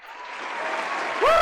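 A canned applause sound effect, played to congratulate a game's winner, swells steadily from a soft start into a full, dense clatter of clapping, with a rising whoop-like cheer cutting in near the end.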